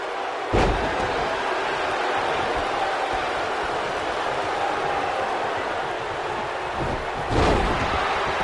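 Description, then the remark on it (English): Two heavy, booming slams of bodies hitting a wrestling ring mat as The Rock goes for a suplex and a pin on Cena in a main event match, several seconds apart, over a steady roar of crowd noise. “Rock goes for a suplex and a pin.”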